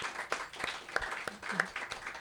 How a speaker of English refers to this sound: Thanks again to our readers. Stephanie Warner, applause.